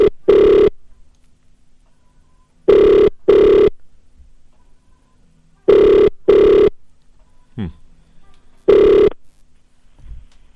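An outgoing phone call's ringback tone sounds in a steady double-pulse pattern, two short buzzing rings then a pause, repeating about four times, loud and clear with a brief faint sound between rings.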